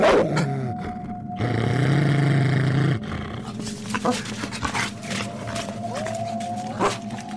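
hound howling

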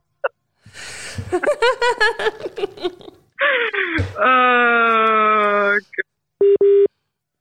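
telephone call tones

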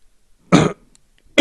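sneeze or cough

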